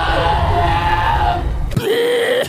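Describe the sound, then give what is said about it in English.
A bear in the film Annihilation lets out a loud, human-sounding scream, harsh and strained, holding for about two seconds before breaking into a shorter, higher cry. “A bear that screams human.”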